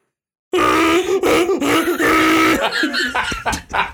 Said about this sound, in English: It sounds like someone's sexually assaulting a camel. You know that's just a donkey, right? I believe you. The sound of the they didn't even try the Tuscan gators. They didn't even try to like pitch shift it or anything. They just like kept it.